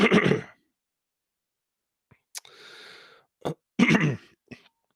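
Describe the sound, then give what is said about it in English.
A wet throat-clearing burst, then a raspy breathy exhale and a couple of sharp phlegmy coughs from a person coughing on their own phlegm, with short silences between them and no talking. “I'm coughing on my own phlegm here.”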